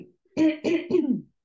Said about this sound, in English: Oh, sorry. Okay. I need a cough probably.